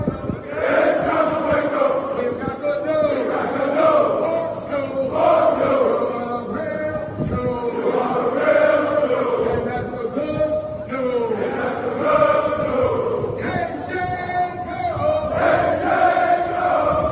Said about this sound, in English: So a little literal army of people dressed in purple yelling, we're the real Jews. Were these guys like promised money or something?